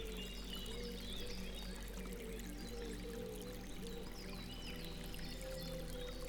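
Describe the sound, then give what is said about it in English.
A small stream of clear water babbles and gurgles steadily over smooth pebbles in a forest, a continuous trickle of flowing water with soft splashes, and a faint low hum underneath. “Leaving the forest canopy, the raindrop found itself on the edge of a small, babbling stream.”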